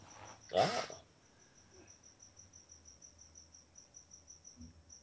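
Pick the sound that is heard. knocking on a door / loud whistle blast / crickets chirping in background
crickets chirping in background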